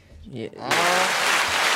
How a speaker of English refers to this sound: Ooh, let him know when. We get an applause for that.